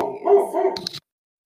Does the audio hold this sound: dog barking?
yes